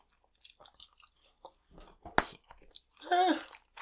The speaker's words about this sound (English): We keep putting more pieces in our mouth, and like, it's still not the best consistency right now. It gets so sour so fast. Also, this might be chewing gum as opposed to bubble gum.